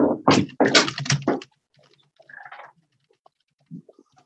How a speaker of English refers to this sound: Someone just logged out of AOL Instant Messenger. That old school door sound effect.